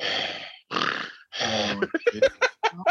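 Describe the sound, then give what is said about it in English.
A voice imitates heavy, wheezing breathing, like snoring while wide awake: three long rasping, snore-like breaths, followed by a quick run of short choppy gasps and snorts. “Like snoring when you're wide awake kind of shit.”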